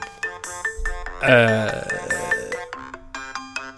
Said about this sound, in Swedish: Jag ska, vänta, det ringer.